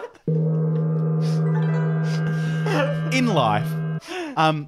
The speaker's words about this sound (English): Let's play the music. Play the gong.